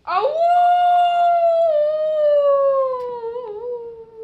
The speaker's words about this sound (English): That's only the dog down in the barn.